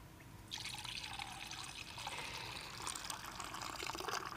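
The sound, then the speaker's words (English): Wine poured into a communion cup during a church communion service: after a brief quiet moment, a steady liquid stream begins and continues unbroken, splashing and gurgling softly with no voices. “And after he had poured it out, he said, this is the cup of the new covenant, sealed in my blood, poured out for you for the forgiveness of sins.”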